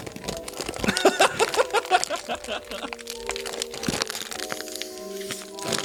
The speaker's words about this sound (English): Now I'm going to open up a bag of circus animals.